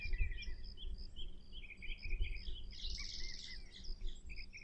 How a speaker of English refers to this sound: The songs of birds.